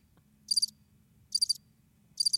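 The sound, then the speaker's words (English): A cricket sound effect played from a preset on a studio console: three evenly spaced bursts of rapid, high-pitched trills, each lasting about a quarter second, over a low steady background hum with no voices. “I've got some chimes. I've got crickets.”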